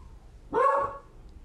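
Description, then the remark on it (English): A single loud dog bark rings out, a short harmonic burst lasting about half a second against an otherwise quiet background; the dog, Arnold, is freaking out because he hears the neighbors walking their dogs. “He's freaking out because my neighbors are walking their dogs and he could hear them.”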